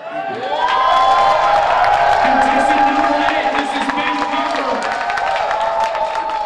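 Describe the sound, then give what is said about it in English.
A large crowd cheers and claps loudly for a contestant's speech in a competition, the roar swelling within the first second and holding steady, with shouts and whoops riding over a dense, continuous patter of applause. “He's just so confident on stage, and the crowd is just eating it up.”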